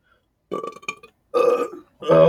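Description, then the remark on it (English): Three loud burps in a row, each a deep, rumbling belch with a brief pause between, the last one the longest and most forceful. “The fact that you burp like that with this kind of quality.”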